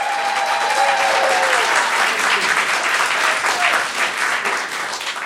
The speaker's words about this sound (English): And by the way, my co-host of Childish, the other podcast that I host, just walked in. Everyone give Greg Fitzsimmons a round of applause.